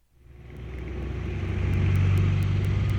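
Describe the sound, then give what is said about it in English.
A recording of an oscillating fan, played by Google Assistant, runs with a steady, droning whir and low hum that swells in over the first second, with faint regular ticking on top and no voices. “Here's the sound of an oscillating fan.”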